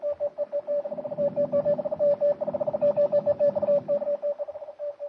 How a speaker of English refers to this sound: But even as the message that will hurry the doom of the ship and all on board crackles through the air,